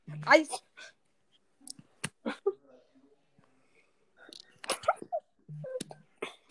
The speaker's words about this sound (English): That was typing. Yeah, that was typing. He was typing.